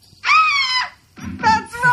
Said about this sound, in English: For the rest of the day, whenever anyone says a secret word, scream real loud.